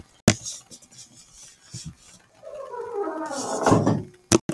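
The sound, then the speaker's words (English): A house door squeaks open with a drawn-out, creaky whine that slides downward in pitch for a couple of seconds, bracketed by sharp knocks or latch clicks. Fairly loud, with no talking. “Just then, Carly heard the door squeak.”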